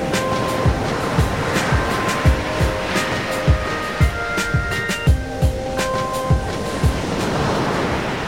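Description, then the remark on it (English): A dreamy, ominous wash of ocean-like noise plays alone, steady and full, with soft rhythmic thuds pulsing through it and faint sustained tones hanging above. It serves as a transition into a review of the show The Resort, streaming on Peacock. “Some kind of dreamy, ominous ocean noise to transition us to our review of a dreamy, ominous show called The Resort, which is streaming on Peacock.”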